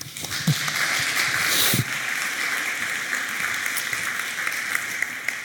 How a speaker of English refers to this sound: Thank you. Round of applause.